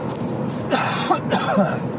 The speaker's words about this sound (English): I still have a pretty good cough.